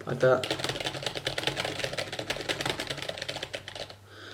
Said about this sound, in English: This is just me sort of typing at the keyboard and talking at the same time.